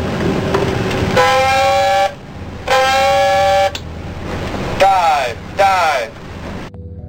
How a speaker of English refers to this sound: Pass the word. Dive, dive. Sound two blasts of dive alarm. Pass the word. Dive, dive. Dive, dive.